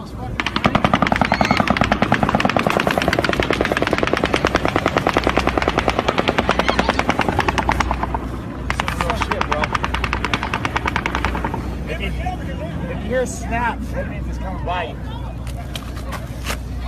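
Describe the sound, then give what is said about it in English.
Rapid automatic gunfire in recorded footage of the October 1, 2017 mass shooting in Las Vegas rattles in a long, sustained burst for several seconds, breaks off, then resumes more unevenly as frantic voices shout over it. “So this is the horrible, you know, shooting that happened in Las Vegas”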